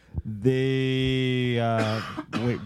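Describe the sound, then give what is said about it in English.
A loud cough and throat-clearing from one person: a short burst, then a long strained voiced rasp, and another brief cough at the end. “Excuse me. I'm very coughing.”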